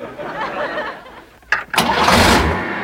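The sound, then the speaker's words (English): A car engine cranks with a couple of sharp bursts, then catches and roars up into a loud, sustained rev, with no voices. “Whoa! Stay. Good car.”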